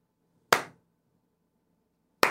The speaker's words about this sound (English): I need you to give the Slow Clap of the Day to John_Frick in the chat.